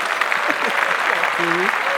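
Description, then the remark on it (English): An audience applauds in a dense, steady wash of clapping for about two seconds, with a few voices calling out over it and one drawn-out vocal tone near the end. “Clap that up.”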